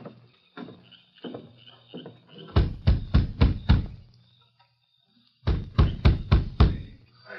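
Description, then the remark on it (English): Someone raps firmly on a door, two bursts of about five loud knocks separated by a short pause, after a few softer taps at the start. “Now you knock on the door.”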